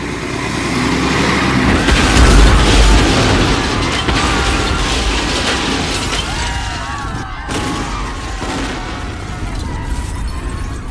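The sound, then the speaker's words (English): A loud explosion booms with a deep rumble and shattering debris, then dies into a sustained roar of chaotic noise, with faint voices and clatter underneath. “8 members of the Stain Gang are in custody, but Cedric Stain himself escaped in the chaos during the explosion.”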